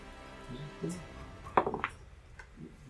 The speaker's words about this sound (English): Are you rolling in my dice box? Yeah. My dice.